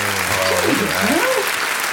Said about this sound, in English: Fantastic clapping. Yeah, we're really moving on to next level.